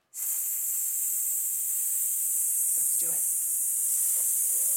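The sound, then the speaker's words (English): A vocal warm-up breathing exercise: one long, steady hissing exhale through the teeth, bright and sibilant, held at an even loudness for about four and a half seconds without a break. “They say breathing exercises are important.”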